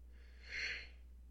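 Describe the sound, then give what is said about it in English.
A small, breathy yawn at 2:40 in the morning swells up and fades away in about half a second. It is soft and airy with no voice, against a low steady hum. “That was a little yawn that snuck in.”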